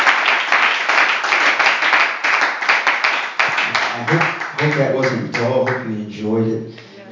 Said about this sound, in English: So let's clap our hands to the Lord today for what God is doing. Amen.